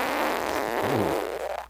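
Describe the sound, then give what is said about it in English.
A single strained fart left as a phone message, squeezed out in a long buzzy rasp that rises and falls in pitch before trailing off, fairly loud with no talking. “Actual fart. Sounds like he was really squeezing it, and he sounds like he was sick.”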